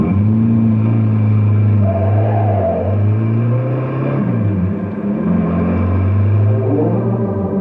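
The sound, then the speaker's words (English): A loud car engine roars, its revs climbing, dipping briefly as if shifting gear, then building again as the car pulls away toward Canyon City. No voices. “But I wish you'd keep this crate down to driving speed for a change.”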